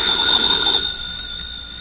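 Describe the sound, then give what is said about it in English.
A telephone rings with a steady, high, shrill electronic tone that holds without a break, fairly loud at first and easing slightly toward the end, with no voices. “Hadn't you better answer the phone?”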